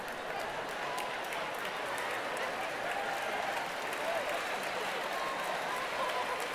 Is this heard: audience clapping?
yes